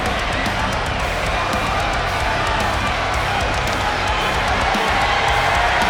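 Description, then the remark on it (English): A wrestling crowd on its feet roars steadily, a dense wall of cheering and shouting that stays loud and unbroken, with scattered whoops and claps rising out of the din. “The crowd are on their feet here.”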